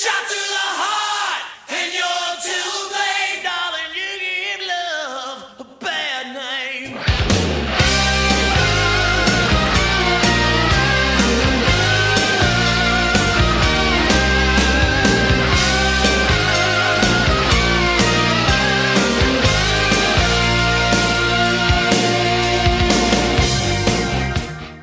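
A rock song opens with a loud, sustained sung scream over sparse backing, then about seven seconds in the full band crashes in with a driving guitar riff and pounding drums.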